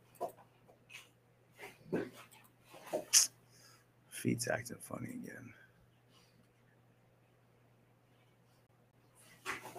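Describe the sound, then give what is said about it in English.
A dog named Zuko snorts and gives soft whimpers in short bursts, with quiet talking and a steady low hum in the background. “Dogs be a punk.”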